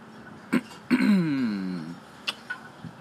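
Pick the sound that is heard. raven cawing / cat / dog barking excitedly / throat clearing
throat clearing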